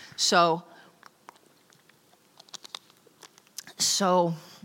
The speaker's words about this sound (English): Let me take a sip of water, actually.